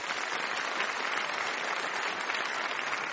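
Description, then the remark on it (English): A sustained round of audience applause at an Intelligence Squared U.S. debate for the series benefactor Robert Rosenkranz, dense and steady with many hands clapping at once, a bright continuous crackle with no voices standing out. “And I would just like to invite one more round of applause for the benefactor of this series, Robert Rosenkranz.”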